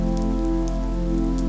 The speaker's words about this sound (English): The rain slowly lets up, and the clouds disperse. The air is clear. The storm has passed.